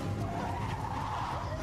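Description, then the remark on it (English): In a film scene, a car swerves as the driver thinks he is about to hit a deer, with a sustained, loud tire skid, a continuous screeching squeal riding over engine rumble for the whole short stretch, unbroken. “He swerves because he thought he was going to hit a deer.”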